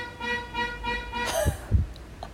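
car horns honking

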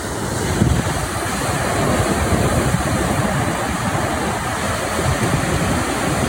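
ocean waves and surf

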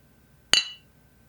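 cups clinking together

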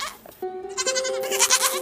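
goat bleating

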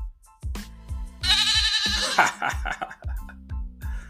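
goat bleat sound effect

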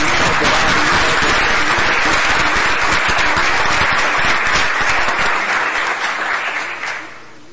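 round of applause

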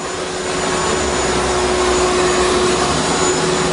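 vacuum cleaner running

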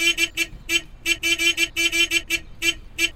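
car horn honking

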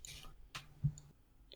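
typing on a keyboard

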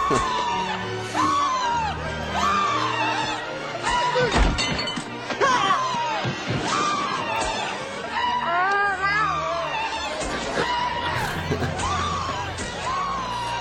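people screaming

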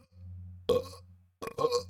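burp

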